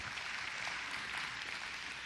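audience hand clapping

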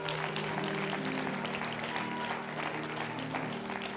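audience hand clapping applause

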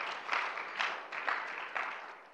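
audience hand clapping

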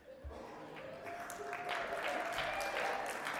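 church audience applause

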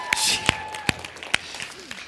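audience applause

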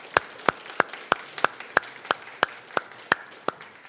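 audience applause

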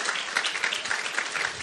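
audience applause and cheering

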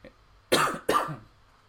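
coughing and throat clearing

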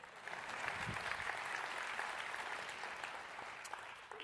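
audience clapping

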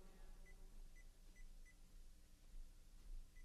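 electronic beeping

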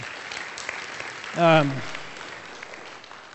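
audience applauding and cheering

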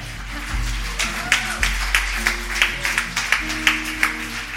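audience applause

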